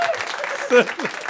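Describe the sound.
A short burst of audience applause, a steady wash of clapping with voices briefly calling out over it.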